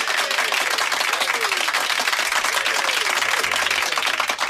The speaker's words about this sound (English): Take another round of applause.